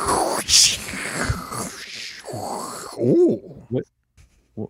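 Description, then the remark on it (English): A voice imitates Bane's loud, rasping breathing through his mask apparatus, a few seconds of harsh hissing breath noise, then a handful of short, low grunting vocal bursts with brief pauses between them. “Him breathing through his apparatus because Christopher Nolan doesn't know how to mix sound, as evidenced by his hit movie, The Tenet.”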